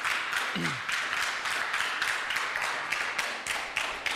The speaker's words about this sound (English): Thank you again, worship team. Please give them a round of applause if you may. Please. Thank you.